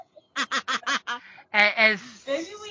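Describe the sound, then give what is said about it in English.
A person imitates a chicken with a quick run of five clucking bursts, then a few louder, drawn-out squawks, fairly loud. “As your six does not hit the intended target, it kind of rolls past, and you hear some things blow up, and a chicken makes some noise.”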